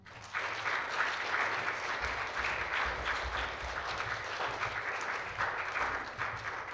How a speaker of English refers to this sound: So why don't we start off with a round of applause?